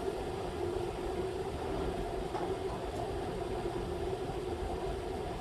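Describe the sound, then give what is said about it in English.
A Wilfa electric kettle heats water with a steady, moderately loud rumbling hiss over a constant low hum, unchanging for the whole stretch, with no voices. “right now you can hear Wilfa the electric kettle and Mustang the small electric oven”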